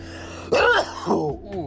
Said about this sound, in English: There's the cough off the vape pen.